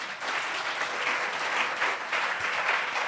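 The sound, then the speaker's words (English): A church audience bursts into sustained applause for Jesus at the preacher's call, many hands clapping together in a dense, steady wash of sound that holds at full strength for several seconds, with no voices rising above it. “Clap for Jesus.”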